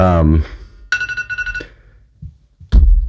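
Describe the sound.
The speaker's own mobile phone ringtone chimes once in a short, steady electronic burst lasting under a second, clear, with someone speaking just before it and again shortly after.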